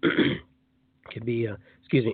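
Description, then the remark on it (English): A person clears their throat: a rough, breathy rasp, a short pause, then two throaty voiced grunts, loud and isolated with no speech. “as I clear my throat here, I think everything's just kind of clear in here right now.”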